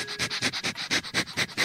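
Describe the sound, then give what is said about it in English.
A dog sniffs another dog's rear on meeting, a quick run of about a dozen short, breathy snuffles in steady rhythm with no voices present. “Yep, they sniff each other's butts.”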